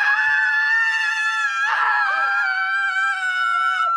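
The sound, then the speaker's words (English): A loud, sustained high-pitched scream lasting about four seconds, wavering briefly partway through before carrying on at full strength, with no speech around it. “Someone who's never screamed that at his own reflection is?”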